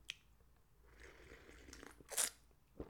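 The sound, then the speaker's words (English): A quick slurping sip of coffee with a short hiss of air, followed by a soft clack as something is set down, over quiet room noise with no talking. “Quick sip of coffee, folks. Coffee break.”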